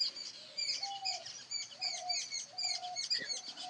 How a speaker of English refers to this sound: It's been wonderful to listen to birds with you.